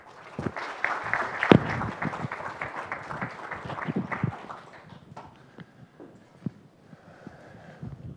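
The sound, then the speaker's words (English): Steady audience applause welcoming Minister Vejonis to speak on transatlantic security in Washington, many hands clapping densely for several seconds before thinning out into scattered claps and fading away. “So, with your applause, please join me in welcoming Minister Vejonis.”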